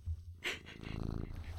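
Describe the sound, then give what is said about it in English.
A male cat purrs close to the microphone, a steady low rumbling pulse, broken by a loud brushing scrape as he rubs his head against the mic before the purring swells again. “He rubbed his head against the mic after I asked him that.”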